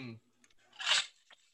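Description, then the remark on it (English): A single sip from a Hydro Flask water bottle, a short wet slurp lasting under half a second, followed by a faint click. A brief voiced sound comes just before it. “Let's take a sip from our hydro flask.”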